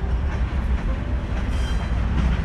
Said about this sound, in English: About that, had to pause for the train again on one of your visits to Chicago.